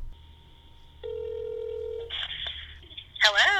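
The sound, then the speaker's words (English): A steady phone tone hums for about a second, then a quick run of electronic keypad beeps sounds as a number is dialed to call a music duo for an interview, and a voice begins speaking right at the end. “I'm going to try to get them on the phone right now.”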